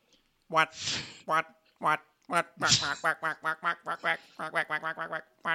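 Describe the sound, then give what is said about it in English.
Loud ducks quack in a rapid, jumbled series of nasal calls, roughly a dozen in quick succession, broken early on by a couple of harsh, raspy bursts. “That's all the ducks that failed their saving throws.”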